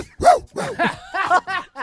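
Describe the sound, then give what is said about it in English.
A man imitates a dog with a string of short, loud, voiced barks and yips, about five quick bursts in under two seconds, with no other talk. “Barking like a dog.”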